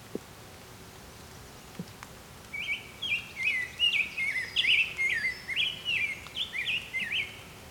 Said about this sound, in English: A brown-headed cowbird here somewhere.